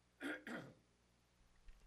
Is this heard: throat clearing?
yes